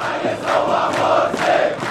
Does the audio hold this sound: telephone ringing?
no